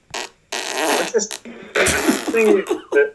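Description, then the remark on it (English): A voice imitates farting with a string of sputtering mouth noises, several wet, buzzy bursts of varying length and pitch in an uneven rhythm, fairly loud and with no clear words. “You can only make these fart sounds when you've got grapes.”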